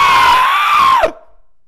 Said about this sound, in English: And finally, it takes a light, and it immediately inflates like a balloon. Smoke starts pouring out of all sides of it, like a just blowing it. Right. And it starts, the card screams at me.